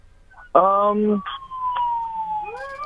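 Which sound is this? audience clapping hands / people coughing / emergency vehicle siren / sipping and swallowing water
emergency vehicle siren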